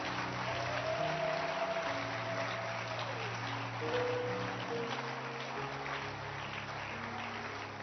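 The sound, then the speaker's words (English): An audience at an evening church service claps steadily, a dense wash of many hands that holds for the whole stretch, with low sustained musical tones humming underneath. “And keep clapping your hands.”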